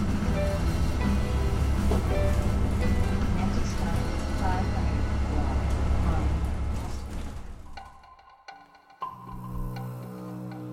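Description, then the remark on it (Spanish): Steady, dense rain pours onto a porch roof outside a house in Vancouver in the morning, in a continuous hiss and patter, with faint indistinct voices underneath, before it thins out and gives way to a quieter, tonal passage near the end. “Esta mañana, el sonido de la lluvia cayendo bajo el techo del pórtico, fuera de casa,”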